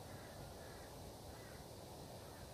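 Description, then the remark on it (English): Faint crows caw far off against a steady wash of outdoor background noise, with no one speaking. “I can hear crows off at the distance.”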